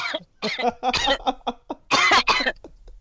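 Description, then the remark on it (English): A series of harsh coughs in quick irregular bursts, the longest and loudest coming near the end before trailing off into a few softer hacks. “not cough over my prayer, please.”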